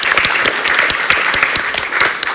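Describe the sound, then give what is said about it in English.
A crowd applauds for the attendees at a conversation, a steady, dense wash of many overlapping hand claps, loud and sustained throughout with no voices rising above it. “So round of applause for you all.”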